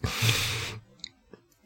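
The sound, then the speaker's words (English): A breathy, hissing slurp lasting under a second, followed by a few soft wet clicks and a small swallow, like someone taking a sip of water. “Sip of water.”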